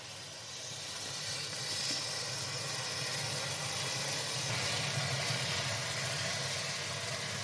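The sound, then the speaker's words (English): Gingerbread men burning fiercely after liquid oxygen is poured over them, making a huge orange flame: a loud, steady roaring hiss with a low rumble underneath, sustained for several seconds without letting up. No one speaks. “So we had a huge orange flame right in the middle of that.”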